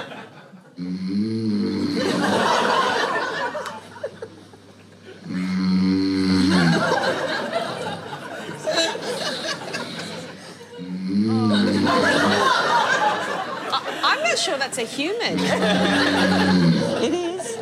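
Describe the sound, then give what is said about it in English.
A recording made by his wife of a sleeping man snoring loudly, four long rattling breaths at a slow, steady rhythm, each rough inhale rumbling into a noisy, snorting exhale with no talking. “let's have a listen to … not snoring”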